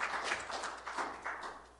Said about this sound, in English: It's okay. You can clap. Go ahead. Don't clap for me. Clap for God.